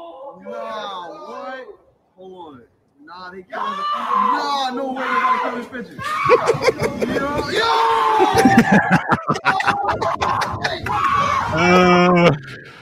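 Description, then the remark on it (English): A woman on a New York subway platform shrieks and cries out in high, shaky bursts as two pigeons push another pigeon in front of a train. Her screams grow louder over the rising rumble and clatter of the passing train, ending in a long, piercing scream. “Two pigeons are pushing another pigeon in front of a train, and the lady's screaming, there's guys saying no”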